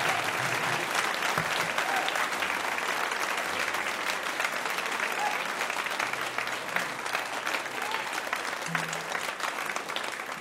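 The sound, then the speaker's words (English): Sustained applause from a large audience, a dense steady patter of many hands clapping at once, filling the whole stretch without pause and with no clear voices on top. “We really appreciate all that applause.”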